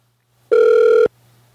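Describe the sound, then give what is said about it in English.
A single loud ringback tone from an outgoing phone call placed again after hanging up: one steady, buzzy half-second burst that starts and stops abruptly, over a faint low hum, with no one speaking. “I'll hang up and call back like an asshole, and she probably won't pick up the phone this time.”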